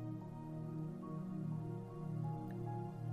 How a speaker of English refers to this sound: Nearby, you hear the sound of running water, probably from a mountain stream or a small waterfall.